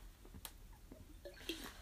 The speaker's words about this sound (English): Gosh, I'm gonna drink some water because this is gonna make me dehydrated.